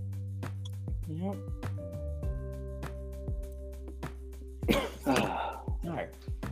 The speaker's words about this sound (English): I coughed.